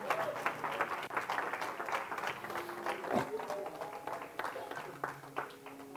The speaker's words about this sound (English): Come on, give him a hand clapping out there.